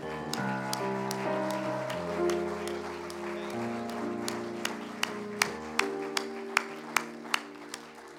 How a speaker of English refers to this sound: Can we clap our hands to him?